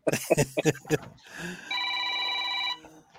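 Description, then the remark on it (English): A telephone rings with a steady, clear electronic tone lasting about a second, right after a short burst of talking. “I thought that was my phone.”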